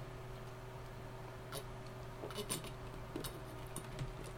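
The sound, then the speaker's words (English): Someone takes a sip of water: a handful of soft, brief clinks and clicks from a glass, scattered irregularly over a steady low electrical hum, with no talking. “And I'm going to take a sip of water here.”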